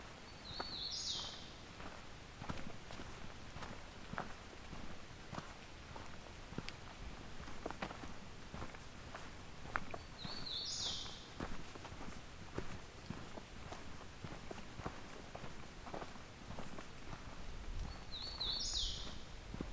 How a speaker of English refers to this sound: Another hooded warbler.